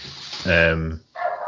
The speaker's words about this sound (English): When did you get a dog? That is certainly not my dog.